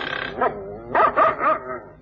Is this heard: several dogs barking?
yes